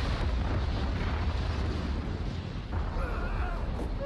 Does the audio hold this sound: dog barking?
no